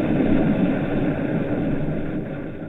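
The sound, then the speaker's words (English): A heavy, continuous rumble from an exploding volcano, one of the sounds of planet Earth on a spacecraft's golden phonograph record, a dense low roar that holds steady and loud, with a slight easing toward the end. “Sounds from planet Earth, such as exploding volcanoes.”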